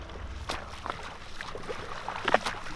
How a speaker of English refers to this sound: The sound of a man swimming in the sea. But this is no normal beach holiday. This is Lewis Pugh, and he's swimming in freezing water near the Greenland town of Ilulissat.